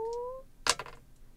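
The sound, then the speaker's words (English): Dice clatter onto a table, with one sharp hit and then a few quick rattling clicks as they settle, rolling a total of 8. A drawn-out voice trails off just before. “So I'm going to do that, and I'm going to roll...”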